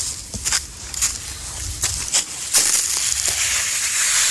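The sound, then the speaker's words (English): Irregular crunching and crackling rustles as a pheasant moves through dry brush up a hill, coming in short uneven bursts over a steady hiss, with no voices. “There's some rustling up here. It might also be a deer.”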